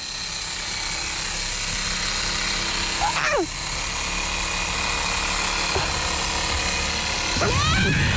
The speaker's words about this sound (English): There's a chainsaw.